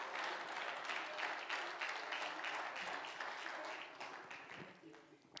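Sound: audience clapping hands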